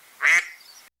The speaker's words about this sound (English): So you get to hear all the amazing sound bites, like whatever duck one is.